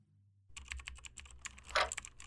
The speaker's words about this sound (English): So I just type in it. Yeah, when you hit A, it'll go.